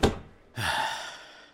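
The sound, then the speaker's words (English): A heavy door thuds closed, then a metal bolt clunks into place as the door is bolted shut, with a short ringing resonance that fades out. Fairly loud, with no voices. “Now, can we bolt the door shut?”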